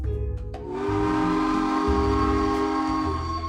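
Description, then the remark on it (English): A loud, sustained steam train whistle blows steadily for several seconds over a low rumbling engine as the train approaches, starting after a few brief chuffing bursts. “Hear that? The Babbel Express is almost here.”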